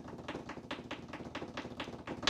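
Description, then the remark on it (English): Rapid, evenly spaced clicks, roughly a dozen in two seconds, sharp like a mouse button tapped repeatedly while someone plays a clicking game, with no voices over them. “Oh my god, maybe we can do the clicking game too. like live. I'm very curious how that's going to sound.”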